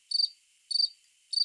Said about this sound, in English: Oh, crickets right there.